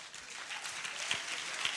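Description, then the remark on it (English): A crowd gives a clap offering for a couple brought forward, clapping steadily, a dense wash of many overlapping hand claps with a few sharper individual claps standing out, moderately loud throughout with no voices. “Come, give them a mighty clap offering.”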